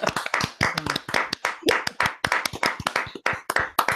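A round of applause: many hands clapping in a dense, fast, overlapping patter that stays fairly loud throughout, with a brief vocal whoop breaking through partway.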